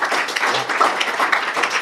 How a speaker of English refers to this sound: Big up, remove debris. Let's have a round of applause for it. I mean, why not?